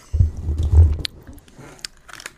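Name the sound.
loud chewing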